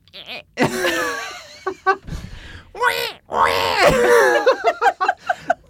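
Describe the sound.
A person imitates a screaming pig with loud, strained, high-pitched squeals: two long wavering shrieks with short gasps between, then a run of quick choppy squeals at the end.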